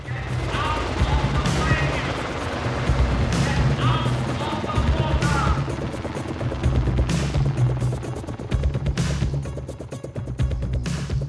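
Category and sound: vehicle, helicopter sound effect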